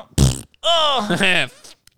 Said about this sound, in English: Oh, no, they farted on my face. Oh, I'm cold, I'm hungry, I'm tired, and my face has been farted on.